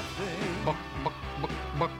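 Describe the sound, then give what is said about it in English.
A person imitates a chicken with a string of warbling vocal clucks, about four or five quick, rhythmic bursts, loud and alone. “And now, here's my imitation of a chicken.”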